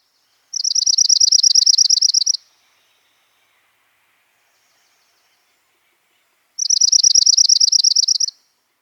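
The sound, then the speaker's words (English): A junco's trill: a rapid, even run of high, musical notes lasting about two seconds, sounding twice with a long quiet pause between, clear. “First Chipping, then Junco, and last orange-crowned warbler.”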